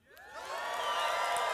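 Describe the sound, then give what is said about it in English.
A church audience shouting and cheering when invited to, many overlapping whoops and voices swelling from quiet to a loud, sustained roar over a second and a half. “So, at all of our churches, if you're ready to dive in, would you shout and cheer just a bit?”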